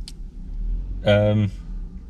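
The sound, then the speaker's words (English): A car that was parked alongside idles with a rough, low rumble, then briefly roars in a harsh, buzzing rev for about half a second before settling back to its uneven drone. “I'm just distracted by the sound of that atrocious thing that was parked next to us”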